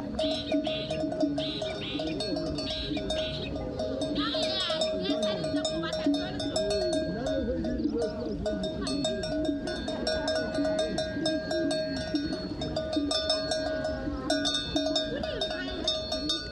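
A steady, continuous jangle of many clanking bells on sheep heading out to pasture in the morning in the mountain village of Malealea, Lesotho, overlapping in an uneven rhythm, with occasional bleats and murmuring voices mixed into the busy background.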